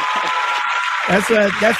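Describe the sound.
A dense, steady wash of clapping runs for a couple of seconds, holding at an even level throughout, with a voice rising over it partway through.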